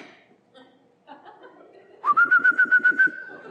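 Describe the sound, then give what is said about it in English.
Someone imitates a cooing bird: a sustained whistled tone pulsing in about seven quick, rhythmic throbs, loud and clear after a stretch of quiet background murmur. “But if the bird is right there and like, hold on, there's a bird. Get the net.”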